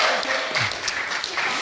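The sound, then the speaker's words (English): Audience applause for two performers who acted as Jesus and a disciple in a Bible reading: a dense, steady wash of many hands clapping at once, loud and continuous for the whole moment, with a faint murmur of voices beneath it. “Give my Jesus and disciple a round of applause, please.”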